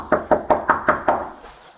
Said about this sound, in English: Well, how would you know we're knocking on the door? We're not leaving. Come to the door.